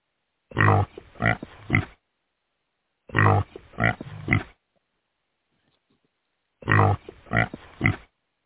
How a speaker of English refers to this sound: Yeah, but how many oinks do I get?